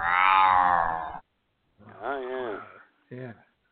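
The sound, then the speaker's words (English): A human voice imitates a cat, with three loud bursts: a long drawn-out meow, then a wavering growl-like yowl and a short final mew, separated by brief silences. “meow.”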